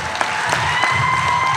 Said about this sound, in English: When you quote the literature, you get claps. It's so cool.